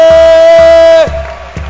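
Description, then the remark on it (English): A crowd cheers loudly, with one high, steady whoop held for about a second over a few evenly spaced claps, before the noise settles into a softer, ragged murmur. “Clap your hands for him!”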